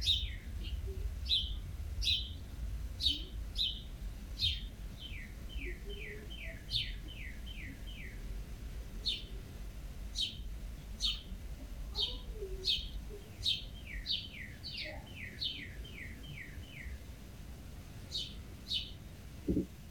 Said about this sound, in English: As a final cool fact, the females of cardinals sing, and they sing from the nest to tell the male that she's hungry.